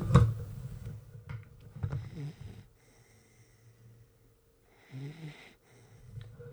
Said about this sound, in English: I want to see if I can get some of the gentle puppy snores that are going on right now. Let's see.